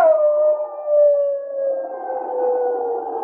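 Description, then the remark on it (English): A man, a crook on a slope below a mining camp, imitates a shrill wolf howl while waving a burning pine branch over his head: one long sustained wavering note that slowly sinks in pitch over about three seconds, loud with no other sounds. “Then he set fire to the pine branch, waved it over his head, and at the same time gave voice to a shrill wolf howl.”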